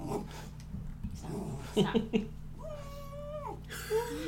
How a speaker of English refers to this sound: Puppies. It's all right. It's a mailman.